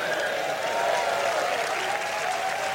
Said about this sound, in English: It's the same audience of cheering fucking cows who go, ooh, just whatever the next thing is fine.